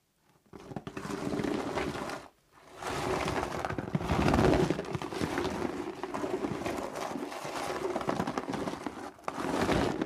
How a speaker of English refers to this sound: But so rocks in a cardboard box. Yeah. There were some bigger ones, there were some smaller ones, and you just sort of roll it around and you get Yeah. Some nice crunching sound. So this is the raw audio.